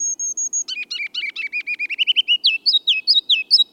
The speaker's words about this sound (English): It's spring, and the ruby-crowned kinglet's loud, rollicking song echoes from the forest edge in northern and western lowlands. Listen carefully, and you can hear three distinct parts of its song.